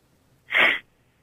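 A single sharp sneeze bursts out, brief and forceful, with a breathy hiss that cuts off quickly into near silence.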